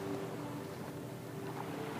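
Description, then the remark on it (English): Ocean waves crash onto a sandy seashore and flow back out, making a steady rushing wash over about two seconds, with no distinct single crash and no voices. “This beautiful rhythm, crashing water, reaching and flowing back.”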